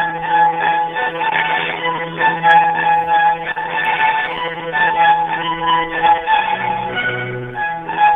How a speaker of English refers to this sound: Please enjoy this Verizon ringback tone while your party is reached.